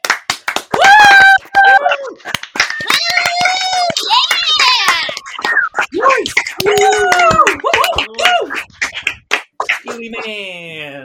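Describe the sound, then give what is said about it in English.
An enthusiastic round of applause from a small group recording sound effects: loud, fast, irregular clapping mixed with high-pitched whoops and cheering voices, carrying on for about eleven seconds before trailing off. “Okay, let's do like a big, really enthusiastic round of applause.”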